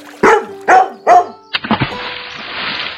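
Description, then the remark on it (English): A dog, Ruby, barks three times in a quick, evenly spaced series, loud, followed by a splash as she gets into the pool and the steady rush of churning water. “Just then, I heard Ruby barking, and then she got into the pool too.”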